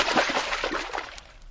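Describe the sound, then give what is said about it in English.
A broad, rushing splash as someone dives under the water to get through an opening beneath a rock slide, followed by a second or so of churning, bubbling water that slowly fades. No voices are heard. “That means going down under the water. I will try it, Pancho.”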